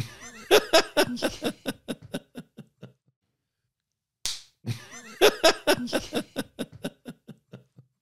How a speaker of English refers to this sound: You gotta hit record and then clap. Yeah, but you have to also clap and then be quiet. Do you put the clap in the podcast? I have because I forget to cut it out. I think every podcast should start with a clap.